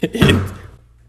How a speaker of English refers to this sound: Anyway, drunk bitch just hit the door. Excuse me, my language.